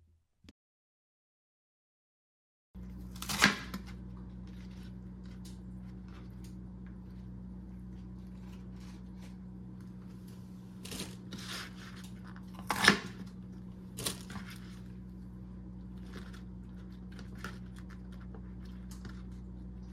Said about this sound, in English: Now I'm going to cut up bok choy. That is another really good ingredient. I love that. So let's get to chopping that as well.